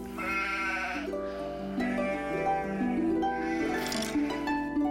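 sheep bleating

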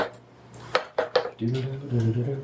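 dice being rolled

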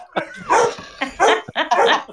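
dogs barking

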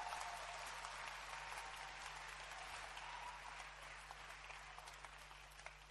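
audience clapping

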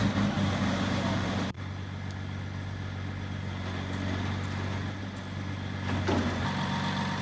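truck engine running

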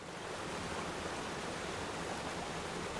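rushing waterfall

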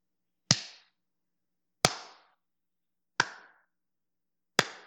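slow hand clap

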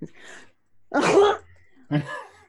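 sneeze

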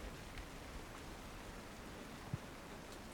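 rain falling

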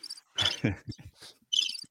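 crickets chirping

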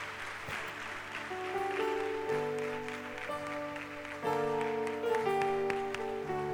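audience clapping

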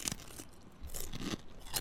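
crunching kettle-cooked potato chips

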